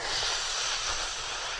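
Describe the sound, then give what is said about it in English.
A single long, airy breath exhaled, a steady hiss held evenly for about a second and a half with no talking, demonstrating the breathing sound "Sa". “Another word that comes from this heart center is the sound of breathing.”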